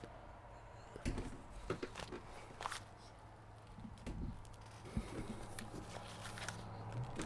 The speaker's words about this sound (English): Sorry about that. Someone tried to open the door